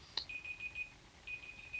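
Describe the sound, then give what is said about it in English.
A timer going off: a short click, then two sustained high-pitched electronic beeps separated by a brief gap, fairly quiet, with no voices. “Timer's up.”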